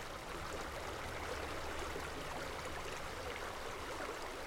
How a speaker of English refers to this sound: It's beautiful, and you can actually hear the waters. We're about the headwaters of East Plum Creek, so you can hear that in the distance as well. It's beautiful.